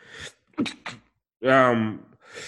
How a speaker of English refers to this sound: I'm sorry, I'm sneezing. That's not a Rona. You don't have to say it.